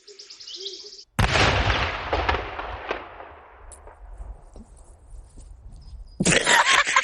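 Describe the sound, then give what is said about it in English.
A sudden loud explosion of a cow in a field of cows eating hay bursts in after faint bird chirping, its blast rumbling and crackling as it slowly fades, before another harsh burst of noise erupts near the end. “And then one of the cows just explodes.”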